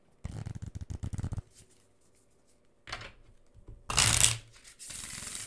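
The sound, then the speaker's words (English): A stiff, thick, sturdy new deck of cards, not yet broken in, is split in half and shuffled: a rapid riffling burst, a pause, then a couple of shorter papery riffles and a bright snapping flurry, with no voices. “These cards are so stiff that I haven't broken them in yet. So I'm going to have to shuffle them a couple times.”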